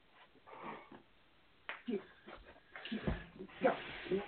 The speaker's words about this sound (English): Sorry, guys, if you heard that noise, our dog was kind of trying to run around in the room.